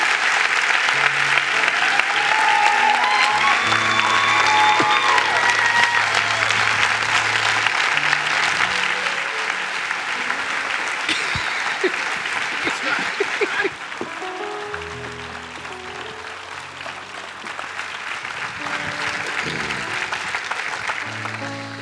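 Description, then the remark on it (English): A large gathering claps steadily and continuously for around twenty seconds, a dense wash of applause that stays loud throughout, with low sustained musical notes faintly underneath, as a pastor is called up. “You're supposed to laugh. You're supposed to clap. You're supposed to rejoice.”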